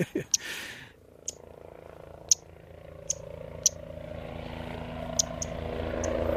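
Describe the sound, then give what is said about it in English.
A helicopter carrying 100 white-faced storm petrel chicks and 3 people approaches Mana Island, its throbbing rotor drone growing steadily louder over several seconds, while sharp, brief high chirps ring out intermittently above the engine noise. “And here's the chopper, 100 chicks, 3 people.”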